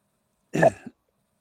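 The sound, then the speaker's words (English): A single throat clearing, a short rough burst followed by a brief second grunt, then silence. No talking. “I just want to make sure that I'm clear here because I'm clearing my throat.”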